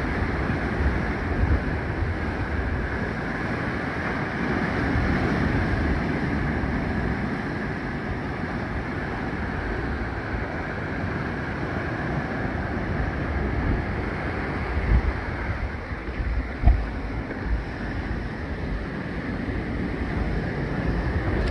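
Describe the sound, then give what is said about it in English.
A steady, broad roar of rushing water surging in waves fills the scene, with surges swelling and a few sharper splashes near the end, continuous with no voices. “So the thing about this water is tricky. When it looks like it's not really moving fast, it comes at you all of a sudden.”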